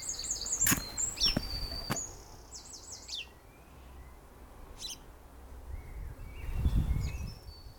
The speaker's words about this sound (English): Ooh. Sparrow.